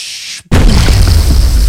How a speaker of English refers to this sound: Is there an explosion effect? Explosion. No, I'm going to do it in post.